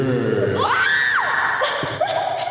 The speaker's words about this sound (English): It's like a ghost. It's like, I like the echo of the sound effect.